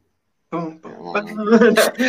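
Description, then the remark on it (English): A voice imitates a snake, with a raspy, voiced hissing sound that builds and ends in a sharper breathy hiss. Moderately loud, lasting about two seconds. “That's my really bad snake impersonation trying to cut the hair that's fake.”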